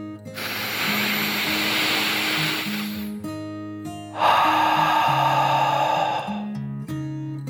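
A deep breath drawn in for about three seconds, then a brief pause and a slightly louder, airy exhale of similar length, with soft, low musical notes underneath throughout.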